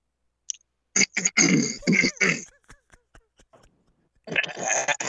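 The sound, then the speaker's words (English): A person clears their throat loudly and harshly in a few gravelly bursts, followed by some faint clicks and a second rougher throat-clearing burst near the end. “I'm gonna clear my throat.”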